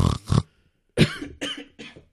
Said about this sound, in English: you okay? You got a cough? You got COVID?